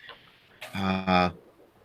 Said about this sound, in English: So you've definitely been discovered. No sharks yet. But you've definitely been discovered by the seagulls, who noisily start enjoying the feast and making a big noise and a big squawk.